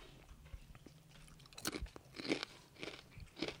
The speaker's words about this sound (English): There's like five people watching us just eat chips right now.